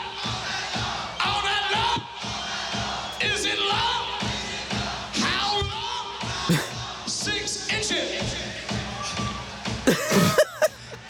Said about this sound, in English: Hear the crowd pretty well, better than you can hear the drums.